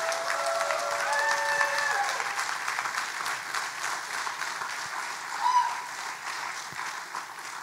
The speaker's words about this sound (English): Would you all give a round of applause to our panel today?